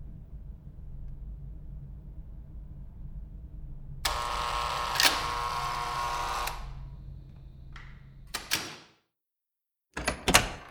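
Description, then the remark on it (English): A door swings open with a long creaking scrape over a low background rumble, then shuts with a couple of sharp knocks and a final thud. “Maybe I should come on in and we'll get this door closed.”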